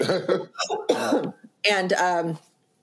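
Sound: cough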